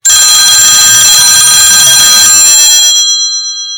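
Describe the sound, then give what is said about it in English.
A loud, shrill telephone bell with caller ID rings continuously with a rapid metallic trill while someone is baking cupcakes, then stops and its bright ringing tones fade away over the last second. “No sooner had she begun mixing the ingredients together and filling the cupcake papers with the batter for the first 3 dozen cupcakes when the phone rang.”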